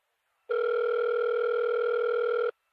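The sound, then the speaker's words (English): A telephone rings once with a steady, electronic two-second tone, loud, then cuts off into silence. No one speaks. “It's ringing.”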